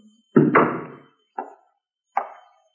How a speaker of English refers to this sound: Come in. Come on in, son. Close the door.